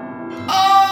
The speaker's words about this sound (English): Did you hear those bells ringing, Sabrina?